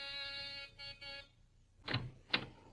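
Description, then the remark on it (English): A buzzing doorbell of an apartment in a cheap village flat sounds at about 9 p.m. in three bursts: a long harsh buzz, then two short ones. A pause follows, then two dull thumps. “It's about 9 p.m. when I get my finger on the doorbell.”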